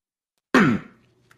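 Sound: cough or throat clearing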